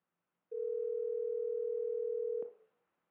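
A phone call placed from a smartwatch connected over the AT&T cellular network at the Steve Jobs Theater rings: one steady, clear electronic tone lasts about two seconds, then cuts off with a sharp click as the line connects. No voices are heard.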